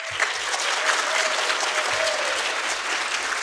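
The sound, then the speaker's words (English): A small group applauds steadily in approval for several seconds, dense overlapping hand claps, fairly loud, with a faint murmur of voices underneath. “Wait, we should do a clap. We should do a clap thing.”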